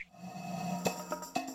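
Two sharp finger snaps, with a fainter click between them, over a steady low hum. The snaps are crisp and brief, and no one speaks.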